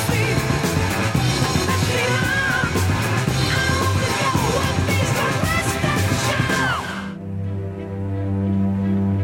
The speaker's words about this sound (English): Turn around to look towards the sky and see Robin riding a mighty Pegasus or a unicorn. It doesn't matter what it is. It is awesome. Robin lets out a wahoo!